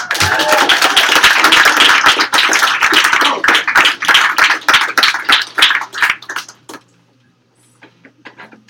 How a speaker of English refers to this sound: Our next poet is, I believe, a Brooklyn Poets Yop debuter, so give her a warm round of applause.